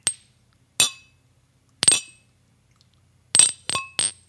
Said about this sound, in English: I'm going to raise my coffee cup to my water glass. Cheers